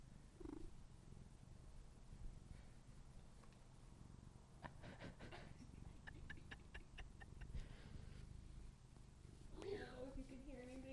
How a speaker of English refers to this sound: That was a crazy meow.